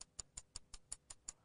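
A wristwatch hidden under a mattress ticks steadily and quickly at night, each crisp click evenly spaced about five per second, heard alone in otherwise quiet surroundings.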